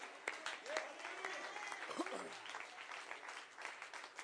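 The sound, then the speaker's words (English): A church audience claps during a preacher's sermon in a dense, sustained burst of applause, with scattered voices calling out faintly beneath the steady patter of many hands. “I'm getting some claps and some amen.”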